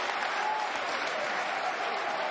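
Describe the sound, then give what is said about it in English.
A Millwall football crowd in a stadium applauds a full-stretch diving tackle that sends the ball back toward the Cardiff goal, a steady, dense wash of clapping from many hands that holds at an even level throughout. “That'll earn him a lot of credit with the Millwall crowd.”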